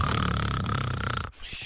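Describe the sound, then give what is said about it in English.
A voice imitates the loud, sloppy, drooly snoring of a drunk person sleeping it off in a parked car: a long, rattling, drawn-out snore, breaking off abruptly into a short wet snort and breathy gurgle. “And you do that kind of good snoring, loud, sloppy, drooly sleep that you have when you're drunk.”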